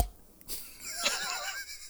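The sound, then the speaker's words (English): A person imitates Peppa Pig, giving a short breathy snort followed by a wavering, squealy grunt, with no other talk around it. “Peppa Pig.”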